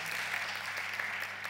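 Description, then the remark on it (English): An audience gives another round of applause after a prayer, clapping steadily throughout, a dense continuous patter of many hands at moderate loudness, with no voices over it and a faint low hum underneath. “Yeah, do you want to give them another little round of applause and just celebrate with them?”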